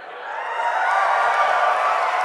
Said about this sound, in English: Okay, guys. We're in Washington, D.C. Okay, that's the last time you guys are going to cheer when we say Washington, D.C.